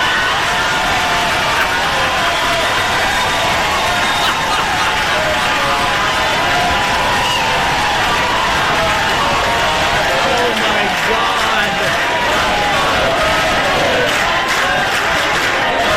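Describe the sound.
A large crowd roars and cheers continuously, with chanting voices and scattered clapping blending into a loud, dense wash of noise that holds steady throughout.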